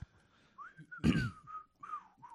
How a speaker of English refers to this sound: Look at that mic technique. He ain't going to whistle right into it because that would sound awful. That sounded sweet and delightful.